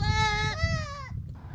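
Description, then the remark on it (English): A goat up in a tree in the Argan Forest near Essaouira, Morocco, bleats loudly, one long wavering cry that dips in pitch before trailing off, with a low rumble of outdoor noise underneath. “Ahead, yes, those are goats in those trees.”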